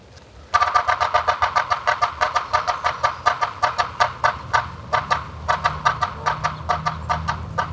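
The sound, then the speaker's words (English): A yellow-bellied sapsucker's irregular drumming and harsh call notes ring out loud in a long series of sharp, rapid bursts with one brief pause, over a low background rumble. “The Morse code of the yellow-bellied sapsucker is less regular than the drum of other woodpeckers, and its call note is harsh.”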